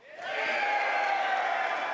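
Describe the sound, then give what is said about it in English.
Men in an audience scream together at a speaker's call, one loud, sustained roar that swells up quickly and holds steady for about two seconds, a mass of rough, mid-pitched voices. “Oh, I could feel the hair building off your chest as you gave that scream.”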